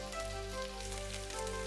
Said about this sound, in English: Then, over high heat in a large frying pan, heat the vegetable oil. Once it's hot, add the onions and lower the heat to medium.